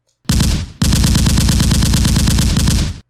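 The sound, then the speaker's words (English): A machine gun fires a rapid, sustained burst of many rounds inside a store, loud and relentless, pausing briefly after the first half second before hammering on for nearly three seconds without voices. “Someone was firing a machine gun.”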